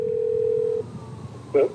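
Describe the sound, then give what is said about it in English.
A telephone rings on an outgoing call to the current resident of an apartment: one steady, mid-pitched ringback tone holds for under a second, then cuts off, followed by a brief soft blip over low background rumble. “I rung up the current resident.”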